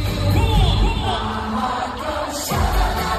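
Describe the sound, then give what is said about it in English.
A large concert crowd roars and cheers continuously as a band come on stage, a dense wash of shouting voices that swells slightly near the end, heard as if from within the audience. “It just sounds like the crowd”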